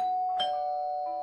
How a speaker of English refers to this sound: A doorbell? Yep. Doorbells are now officially dead. It's old technology, like dial-up internet cassette tapes or the telegraph machine. We don't even have a doorbell.